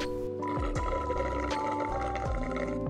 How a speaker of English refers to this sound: My voice wavered. Gotta drink my water.